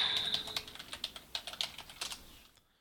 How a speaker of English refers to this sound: I hear you clicking. I'm typing to him.